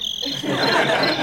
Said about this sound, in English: I might not need this tonight. I brought my my cricket noisemaker.